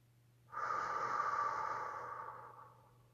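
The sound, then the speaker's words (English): A single long, forceful whooshing exhale in a breathing exercise, after inhaling silently through the nose to a count of 4 and holding the breath to a count of 7. It is breathy, rising quickly and fading out over about two seconds, with no talking and a faint steady hum underneath. “And then make a whooshing exhale.”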